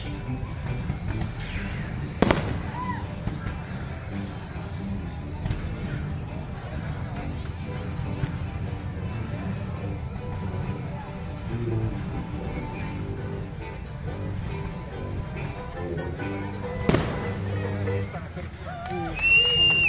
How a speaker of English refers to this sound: Fireworks! Fireworks!